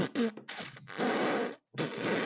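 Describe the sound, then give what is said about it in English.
A person blows a wet, sputtering raspberry with the mouth, imitating a fart in several loud bursts with brief pauses between them, and no talking. “Yeah, I got really good at doing fart noises.”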